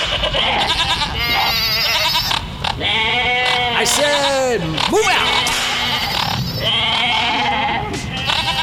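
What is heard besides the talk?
goats bleating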